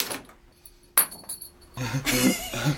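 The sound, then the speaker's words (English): A metal wheelchair brake extender, thrown by a man as far as he can, lands with a sharp clink and a short rattling ring, followed by a louder stretch of jumbled noise and faint vocal sounds. “that clinking sound of … throwing his brake extender”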